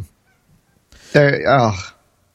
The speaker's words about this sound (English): came out from under my covers, like, meowing. It sounded like he was crying to the music. That was really cute.